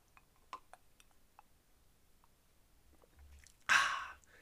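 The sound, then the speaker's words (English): A few faint clicks like a glass being handled, then a short, breathy slurp of a sip of bourbon, with no talking. “And bourbon sip.”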